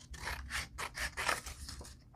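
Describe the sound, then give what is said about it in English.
Steady snipping of scissors cutting out a shape printed on 67-pound paper, a quick series of rhythmic crisp cuts with a faint low rumble underneath and no talking. “So let's just cut this out.”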